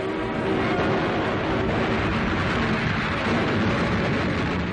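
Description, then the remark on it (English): A Russian artillery barrage ordered by Colonel General Kosakov and his staff in the attack on Praga, Poland, east of the Vistula, merges into one dense, continuous roar of rumbling gunfire, steady and loud throughout with no clear gaps between blasts and no voices. “Colonel General Kosakov and his staff order a barrage of intense gunfire.”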